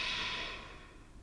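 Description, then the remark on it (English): A slow, airy exhale through the nose during a guided breathing exercise, after a deep breath in held at the top. It starts fairly strong and gradually softens as the breath tapers off. Just one breath, with no talking. “Exhale out of your nose.”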